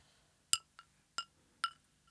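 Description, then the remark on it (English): Ice cubes clink against a glass of iced coffee in four bright, ringing taps at an uneven pace, clear, with quiet pauses between and no talking. “Is it an ice cube in the glass?”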